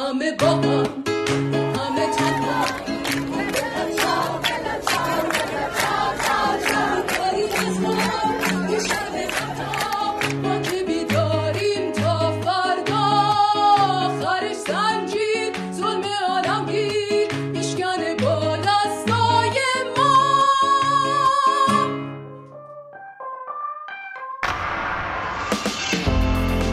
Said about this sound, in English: We're going to leave you with this soulful rendition of the song that's going viral this week. Crowds of protesters are singing it, and it's emerging once again as a revolutionary anthem.